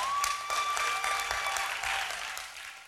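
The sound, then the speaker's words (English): An audience claps for Jesus together in a dense, sustained burst of applause, bright and steady throughout, with a thin high whistle-like tone threading over the clapping early on. “Clap for Jesus.”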